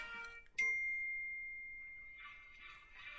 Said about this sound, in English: Dryer went bzzz.